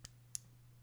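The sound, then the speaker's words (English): Two quick, sharp pen clicks spaced a fraction of a second apart, fairly crisp, over a faint steady low hum with no talking. “That was my pen clicking.”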